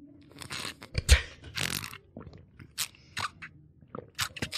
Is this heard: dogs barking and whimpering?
no